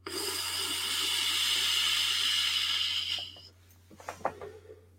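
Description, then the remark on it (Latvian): A VooPoo vape pod kit with PnP coils fires quickly with a steady sizzling hiss of vapor for about three seconds, then cuts off, followed by a few faint clicks and small pops against a low background hum. “Viņš ātras pieslēdās un sāk ražot tvaiku.”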